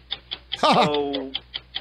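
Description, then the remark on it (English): Rapid, steady ticking of a game clock counting down 45 seconds in a sports trivia round, about four ticks per second, fairly loud, briefly overlapped by a short drawn-out vocal sound in the middle. “45 seconds on the clock. Begin.”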